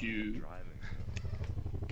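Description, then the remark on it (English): A helicopter sound effect from a music recording: a steady, low rhythmic chopping throb that pulses throughout, with a brief tonal, voice-like sound over it at the start. “Oh, there's the helicopters”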